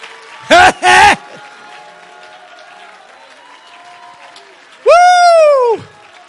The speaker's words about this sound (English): I got bogged down here a little bit, but I'm going to tell you what, if you'll clap your hands and shout unto God right now, you'll wake every spirit up.